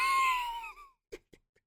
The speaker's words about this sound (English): Oh, God bless you.